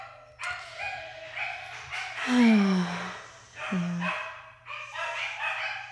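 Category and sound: animal, dogs barking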